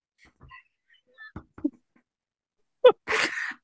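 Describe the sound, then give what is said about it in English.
A person sneezes once, loud: a sharp catch of breath, then a forceful, noisy burst, after a few faint, scattered small noises. “Bless you.”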